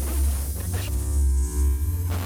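Steady radio static hisses continuously over a deep, droning hum on every channel of a radio, holding at a fairly loud level throughout with slight swells and no voices.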